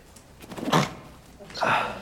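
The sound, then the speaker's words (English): Two quick sneezes about a second apart, each a sharp, breathy burst of moderate loudness, the second a little brighter and more forceful than the first. “Bless you.”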